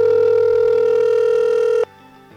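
A loud, steady telephone dial tone hums for nearly two seconds as a phone call is being placed, then cuts off abruptly, leaving a quieter, fainter line tone. No one speaks.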